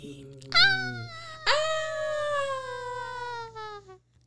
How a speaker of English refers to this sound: And then you hear a woman scream.